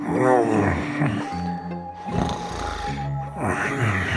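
Loud snoring from a father with a severe snoring problem, deep, rumbling, growl-like breaths, two long snores in a row, each swelling and then fading, with no talking over them.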